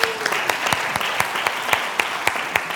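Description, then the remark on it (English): A group applauds visiting friends from Mexico, many hands clapping steadily in a dense, bright wash with a few sharper, louder claps standing out at irregular intervals throughout. “Let's give them a round of applause, okay?”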